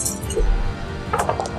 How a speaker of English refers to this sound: And Virgil is shaking the dice.